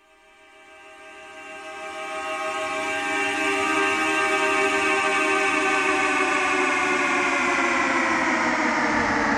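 A car horn played in reverse: a rich, buzzing horn tone swells up gradually from near silence, then holds loud and steady for several seconds before cutting off abruptly, with no talking.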